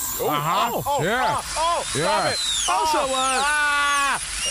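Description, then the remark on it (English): A dentist's drill whines in high, wavering sweeps alongside suction sounds in a dentist's chair, while a muffled, garbled voice talks over it in rising and falling bursts for about four seconds. “There is nothing more annoying than sitting in a dentist chair with all those suction sounds, and especially when they're trying to talk to you.”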